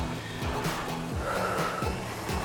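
A rowing machine's flywheel whirs steadily with a low droning hum, punctuated by soft rhythmic swooshes roughly every half second or so. No voices.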